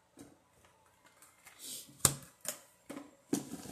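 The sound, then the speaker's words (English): A deck of numbered cards being shuffled for a card reading: a run of crisp, papery flicks and riffles with a few sharper snaps and taps at irregular intervals, and no one speaking. “It's the shuffle for me, because listen, I don't have to shuffle these.”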